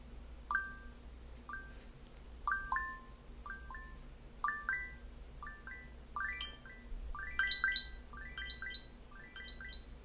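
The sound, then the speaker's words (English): A smartphone ringtone called The Big Adventure: a melody of short, bright chiming notes repeats in quick phrases for the whole stretch, moderately loud over a steady low hum, with no one speaking. “I think it's on my phone too.”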